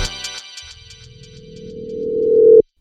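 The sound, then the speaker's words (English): A telephone rings with a fast, bright trilling warble that settles into a steady electronic tone, swelling louder for a couple of seconds before cutting off abruptly. No one speaks. “man, you there? Pick up the phone.”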